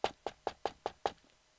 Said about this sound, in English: And sure enough, during the party, a knock came on the door.